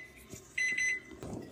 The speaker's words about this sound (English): Okay, so the timer's almost at 20 minutes. I'm just gonna check them as soon as that timer rings and we'll see how they're doing.